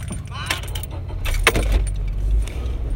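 Keys jangle in an ignition, then a car engine, turned off at a red light, is restarted: it cranks and catches, settling into a steady low rumble that continues to the end.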